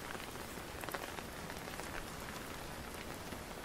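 Steady rain falls in a dense, even hiss, with scattered sharper drops pattering on a surface throughout. No voices, just the continuous wash of rainfall.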